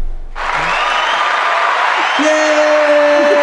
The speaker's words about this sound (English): So we'll clap.